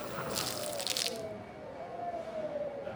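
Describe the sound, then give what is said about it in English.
Chowder splatters on soft body parts inside a restaurant, heard through the door: a wet, squishy splatter bursts out during the first second, then fades, leaving a low rumbling murmur of cheering with a faint drawn-out tone sliding slowly downward. “Through the door, we hear the splattering of chowder on soft body parts and loud cheers and jubilation.”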